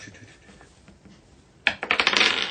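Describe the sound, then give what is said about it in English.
After a quiet moment, big dice rolled to attempt an attack rattle and clatter across a hard tabletop in a quick burst of bright clicks that bounce and settle over about a second. “We need the big dice. Big rolls.”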